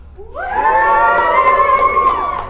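An audience bursts into loud cheering and whooping, rising quickly and holding steady as many voices shout together for a couple of seconds. The audience cheers to show they are getting Sun, in a choice between Sun and Moon.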